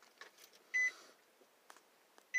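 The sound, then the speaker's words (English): A phone message notification beep sounds sharply, a short bright electronic tone, with a second beep starting right at the end. Faint background noise fills the gap between them, and no one speaks. “Yes, I got another message at that moment.”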